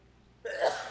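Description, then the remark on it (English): A single sneeze bursts out suddenly after a quiet moment, a short breathy blast that swells and fades within half a second, heard alone at moderate loudness. “Bless you.”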